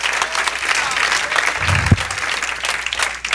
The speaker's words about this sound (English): Somebody to stand on their feet a moment. Just God, come on, give God a hand clap of praise in this house. He is worthy, exceedingly abundantly above it all.